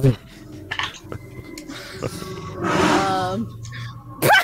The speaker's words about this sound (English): Did a tiger just walk into someone's room? No. That was just a Harley Davidson and decided to. Sounded like a legit Bengal tiger. It was intense.